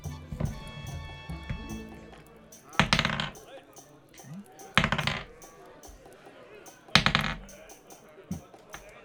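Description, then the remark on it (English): Dice being grabbed and rolled, clattering and rattling in three sharp bursts a couple of seconds apart, after some lighter fumbling at the start, with faint voices murmuring in the background. “Let me grab my dice.”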